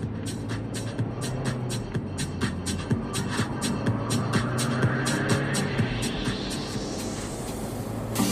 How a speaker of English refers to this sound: A large box truck pulls in to the parking lot up to the admission gate of the Storm King Art and NFT Center.